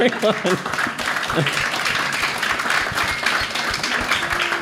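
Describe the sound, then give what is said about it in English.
A round of applause from a group, dense overlapping claps sustained steadily throughout, with a few voices and cheers mixed in at the start. “Round of applause”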